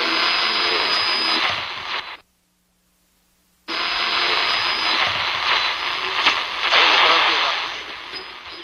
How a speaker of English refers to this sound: It's kind of, once again, it does that thing of, you know, it's 2 minutes 40 and the first 30 seconds is just radio static.